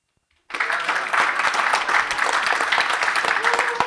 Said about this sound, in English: And you step on my lines with applause, and then I give you a good space, and you just miss it.